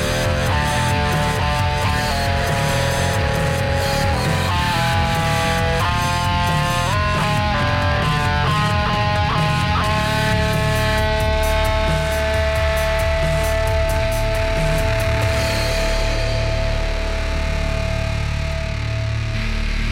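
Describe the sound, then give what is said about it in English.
A loud, heavily distorted rock intro with thick, fuzzy guitar chords shifting pitch over a steady, driving low end, filling the whole stretch at constant volume with no voices. “Heavy distortion.”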